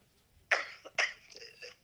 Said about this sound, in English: With this cough, you don't sound great.